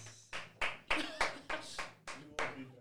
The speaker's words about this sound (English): Round of applause.